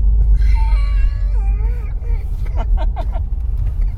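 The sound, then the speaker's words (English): The Norman E. Box, a historic steam fire engine, rumbles heavily beneath a wavering, whistle-like wail that slides downward, followed by a quick run of four or five sharp puffing bursts. “Is that a steam engine?”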